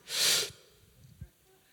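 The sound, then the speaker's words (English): A single loud intake of breath lasting about half a second, then near silence as the breath is held, with only a faint soft bump afterward. “Try to just inhale and see what happens.”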